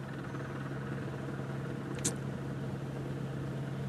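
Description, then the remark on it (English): A helicopter hovers overhead, its steady low engine drone and rotor hum holding constant throughout, with one brief sharp hiss breaking through near the middle. “There is a chopper right above us, and somebody else just asked me about that.”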